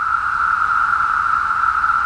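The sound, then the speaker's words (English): A steady, loud chorus of periodical cicadas, the kind that emerge only once every 17 years, singing in the trees in summer in the US Northeast and Midwest; a continuous buzzing drone centered on one mid-high pitch that holds without pause for the whole clip, with no voices. “The trees ring with their singing, and the streets, sidewalks, gardens, and parks are filled with their cast-off shells.”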